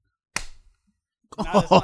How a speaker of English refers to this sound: How are yours so much louder? You clap like a bitch. Even still. Man, mine's way louder. Holy you gotta shit. Clap your hands better.